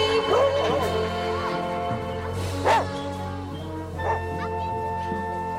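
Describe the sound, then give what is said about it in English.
A puppy lets out several short, high-pitched yips and little barks, scattered irregularly, over a steady tonal hum in the background. “Along the way, I sought out the leadership skills, mainly through the puppies growing up.”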